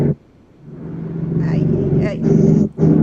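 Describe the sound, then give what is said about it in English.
A loud, steady engine roar swells in and holds as an airplane flies low overhead outside a home near Reagan airport, with muffled voices faintly audible beneath the rumble. “You can hear, like, the planes outside.”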